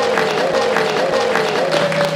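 A live studio audience applauding loudly and steadily for about two seconds, a dense wash of clapping with a sustained whistle-like tone running through it; no one speaks.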